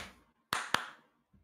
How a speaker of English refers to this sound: If you clap more, you're just going to throw off the editing of the audio. You're going to be there so confused. I usually don't use the claps.